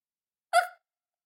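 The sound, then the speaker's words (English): A single short, sharp yip from a human voice imitating a small dog's bark, bright and mid-to-high pitched, about a quarter second long, alone in silence. “Why was it a little dog?”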